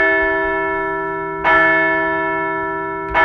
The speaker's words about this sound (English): Let's ring the bell for a series opening win over the Tampa Bay Rays.